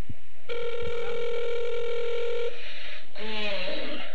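A phone call rings unanswered: a long, steady electronic ringback tone sounds for about two seconds, pauses, then a second warbling ring begins. No one speaks.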